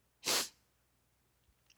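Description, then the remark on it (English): A single sharp sneeze bursts out loudly, a broad hissy blast lasting about a quarter second, followed by near silence and a faint click at the end. “So, sniffle, sniffle. I have no Kleenex around me.”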